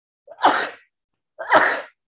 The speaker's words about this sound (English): And I'm about to sneeze.